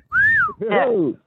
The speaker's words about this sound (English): I'm walking by a building site. Okay. but they're not wolfish on that either. Yeah, you should whistle up at them.